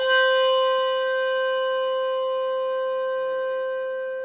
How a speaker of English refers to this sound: Here, I'll play them again. Schulmerich bell with tang. Malmark bell, no tang.